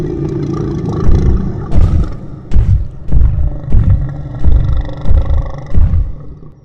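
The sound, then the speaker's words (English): A deep, rumbling monster roar from a wounded creature growls on without a break for several seconds, swelling in a series of heavy, pulsing surges, before it flees into the woods. It is loud, with no voices. “It let out another mighty roar and then took off into the woods.”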